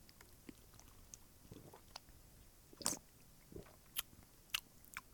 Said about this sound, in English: I'm taking a sip.